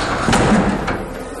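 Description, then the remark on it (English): Doors opening with a heavy mechanical rush, two sharp bursts close together over a steady background rumble, fairly loud, with no one talking. “Doors, now.”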